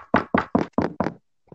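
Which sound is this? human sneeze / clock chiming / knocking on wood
knocking on wood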